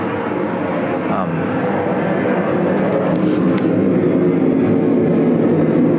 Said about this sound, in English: Dude, that's a jet flying over our house right now. Low pass. Had to cover the baby's ears.